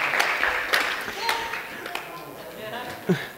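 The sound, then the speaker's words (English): A crowd applauds steadily, many hands clapping in a dense, continuous patter with a few sharper claps standing out, a faint murmur of voices mixed underneath. “Can we give them a round of applause?”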